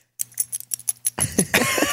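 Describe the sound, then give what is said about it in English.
The collar tags of Walter, a small Yorkie dog, jingle in a quick series of bright metallic clinks, followed by louder rustling and handling noise as the jingling continues. “You can hear his little jingly.”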